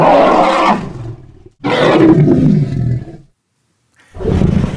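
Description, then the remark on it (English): Three loud, deep, resonant elephant roars in succession, the first two long and rumbling, the third cut off at the end, with no talking. “but they have a much wider vocabulary and range of sounds, including these really deep, resonant roars.”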